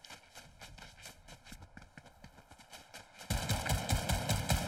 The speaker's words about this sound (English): Footsteps.